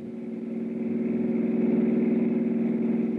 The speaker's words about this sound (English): From where I stood, I couldn't identify the car that suddenly roared away from the back of the house, but one thing was obvious. The driver was in a hurry,